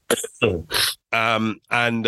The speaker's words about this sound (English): I'll be talking about a couple of different drills today, if I can get rid of my cough, excuse me.